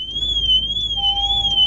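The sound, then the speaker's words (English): A car alarm blares with a steady, high-pitched warbling tone that slowly wavers up and down. A lower continuous tone joins partway through over a faint background rumble. It is a man's car alarm, going off since 4:30 in the morning and waking his neighbours, and he couldn't turn it off. “Now, I had a problem with a similar vehicle in the past and I couldn't turn the alarm off.”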